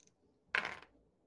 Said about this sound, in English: What's the dice roll? This one's going to be a little tricky, so we'll do 2.